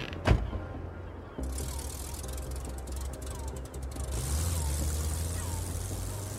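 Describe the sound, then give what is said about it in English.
A sharp thud of a car door shutting as someone gets into his car, followed by mechanical clicking and then the car engine starting up into a steady low rumble. “When I look out my window, I see Reed get in his car.”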